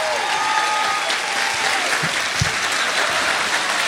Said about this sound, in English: Stand up again. Another big round of applause.